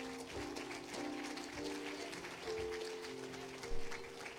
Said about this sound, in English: Would you give him a hand clap this morning?